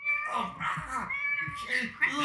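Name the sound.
cat meowing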